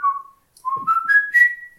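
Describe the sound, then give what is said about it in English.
Someone whistles: a short steady note, a brief pause, then a run of notes that step upward in pitch and end on a held high tone. No talking. “Ants cannot whistle.”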